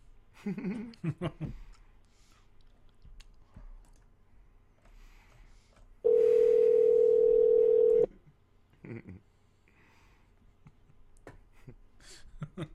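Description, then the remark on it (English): A loud, steady phone tone rings out for about two seconds, a single unbroken electronic hum, as a phone call is being placed, with quieter murmured voices and handling sounds before and after it. “I could call him, I guess. I could do it right here. Are you calling him?”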